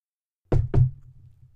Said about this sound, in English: Before Mike could respond, another knock.